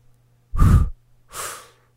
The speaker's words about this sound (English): Okay, you know what? I want one with breathing out first. Yeah, let's do it.